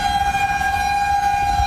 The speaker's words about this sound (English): One guy fleeing the storm captured the heart-pounding sound of sirens echoing across the landscape. That's an eerie sound when you hear that. Tornado sirens going off. I'm in between two supercells.